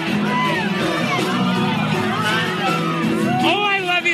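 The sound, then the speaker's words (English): A loud, dense concert crowd roars and cheers continuously while a fan filming on a camera shouts excitedly over the din to the singer, "Oh my God, I love you so much," voices rising and falling through the whole stretch. “You can hear it in the video. Like, oh, I just shouting.”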